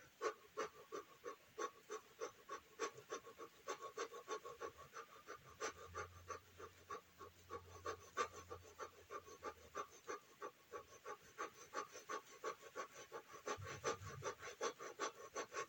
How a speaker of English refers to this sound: And now I'm moving into that fast breath, breathing in and out really quickly.